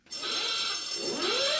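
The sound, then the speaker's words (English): A harsh, buzzing alarm sound effect blares loudly and continuously for about a second and a half, with a tone that sweeps upward near the end. “I'm about to use the title again, so perhaps we could prep the alarm.”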